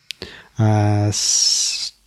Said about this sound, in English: There's a parrot that's mad that the parrot's not playing Dungeons & Dragons. I don't know if you can hear it.